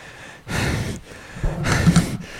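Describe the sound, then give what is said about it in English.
A voice imitates the heavy, labored breathing of someone pushing a couch to its limits: two loud, breathy huffs, the second rougher and a bit longer, with no words spoken. “It was just like every episode would just be us pushing a couch to its absolute limits, and the breathing is like.”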